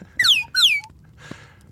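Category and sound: signal or alarm, whistle being blown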